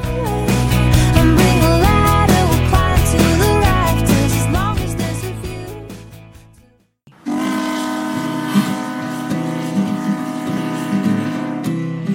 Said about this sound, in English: Well, there goes the Kennedy steam whistle blowing. That means it's time to take a break.